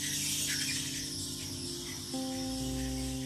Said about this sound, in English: I'm so sorry about that. That was a really loud car that definitely needs to go to the mechanic.